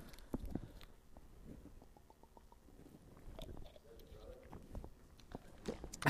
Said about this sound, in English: I'm going to take a quick drink of water.